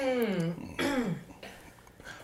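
burp into the microphone

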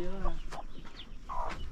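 rooster clucking

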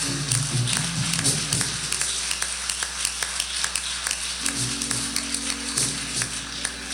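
audience clapping hands

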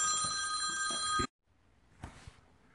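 telephone ringing

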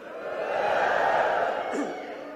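audience shouting praise

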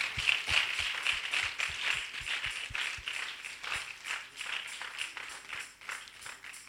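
audience clapping hands

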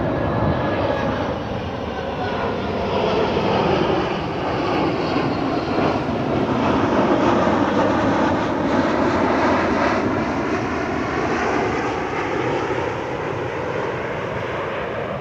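airplane passing overhead

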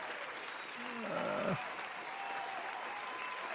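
crowd applause sound effect

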